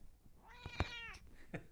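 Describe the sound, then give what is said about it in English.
A single drawn-out meow from a female cat whose claws are stuck in a couch, fairly loud, rising then falling in pitch, followed by a couple of soft clicks and a brief faint chirp. No one speaks. “Big Kitty Pride cameo this week.”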